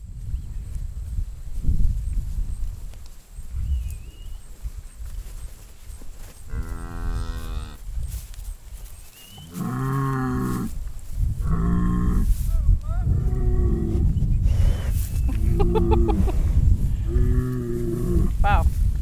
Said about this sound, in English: We stand off to the side, and the cows slowly start filing past us on the way to the barn. It's not raining yet, and one of them, a dark cow named Coco, walks right up to me and demands attention.